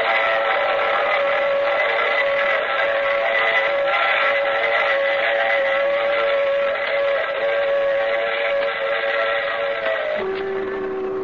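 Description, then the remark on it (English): A steam train's whistle blows loud and sustained over the steady rumble of the moving train, its pitch dropping near the end as the whistle shifts to a lower tone. “I take this same train every week at the same time.”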